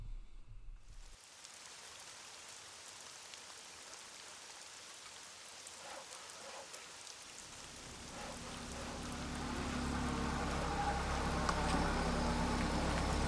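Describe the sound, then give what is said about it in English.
Steady light rain patters down outside a modestly built wooden home with a soft, continuous hiss, while a vehicle engine rumbles low underneath and grows slightly louder toward the end. “A light rain began to fall as Harry and Jay finally showed up at the Petersheim home”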